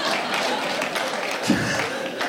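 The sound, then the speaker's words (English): A crowd claps steadily for a couple of seconds, a dense wash of overlapping hand claps with a brief louder burst near the end and faint murmuring mixed in. “Yeah, everybody clap from here. This kind of clap.”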